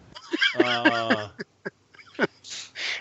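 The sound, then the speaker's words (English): A duck quacks: one long, nasal, buzzy call, followed by a few short clicks and a burst of breathy, hissing noise. “Duck.”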